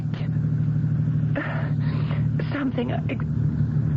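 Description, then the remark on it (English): A car engine runs with a steady, low droning rumble throughout, as if heard from inside the moving vehicle, while a person speaks over it in the middle. “There was nobody but me in the car when I got in.”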